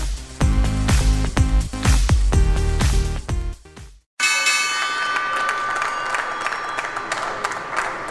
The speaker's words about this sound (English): That was the opening bell at the New York Stock Exchange this Tuesday